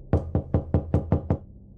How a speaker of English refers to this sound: At 2 a.m., there's a loud knock on their front door.